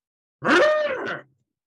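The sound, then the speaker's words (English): A single voice imitates a quiz buzzer: one loud, rasping vocal buzz lasting under a second, with a rich harmonic tone that dips slightly in pitch before cutting off. “Let's go around and let's get your buzzing sounds.”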